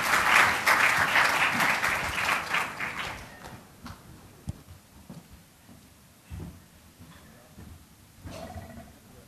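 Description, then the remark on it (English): A conference audience bursts into loud, dense applause welcoming the speakers and chair of a fourth plenary session, lasting a few seconds, then quickly thins out to a few scattered claps and quiet background noise. “Ladies and gentlemen, can you please give a warm welcome to the speakers of this fourth plenary session of today's Asia Forum and its chair,”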